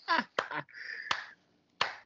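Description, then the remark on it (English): A few sharp, isolated hand claps spaced unevenly over two seconds, with a brief high whistling tone and some murmured vocal sound between them. “You done clapping now?”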